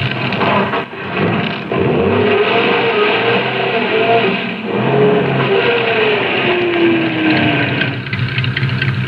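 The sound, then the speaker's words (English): A car engine revs hard and steadily as the car backs off the road, its pitch rising and falling as it strains, with a rough, loud mechanical roar throughout and no voices. “Now back your car off the road.”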